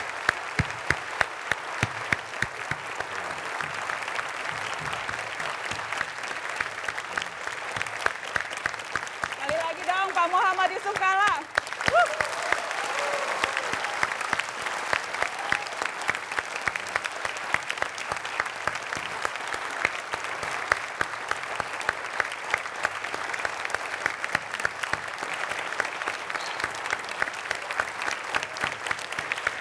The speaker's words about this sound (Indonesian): Boleh kita berikan tepuk tangan? Terima kasih Pak JK.